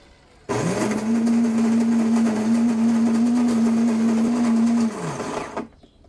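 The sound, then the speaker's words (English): A coffee maker, started with its start button, grinds coffee beans: it starts abruptly and runs at a loud, steady motorized whine with a rattling, crunching texture for about four seconds, then winds down and cuts off. “So I'm gonna press it, and then you're gonna hear the coffee grind, and that'll take a little bit of a while. It's gonna be very noisy.”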